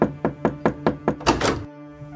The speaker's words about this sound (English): There was an unexpected yet fateful knock on the door.